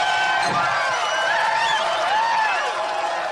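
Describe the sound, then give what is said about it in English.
A large crowd cheers and whoops continuously, many voices blending into a steady roar with a few rising shouts on top, loud and sustained throughout. “Yeah, you guys are cheering because you don't spend a lot of time with these people.”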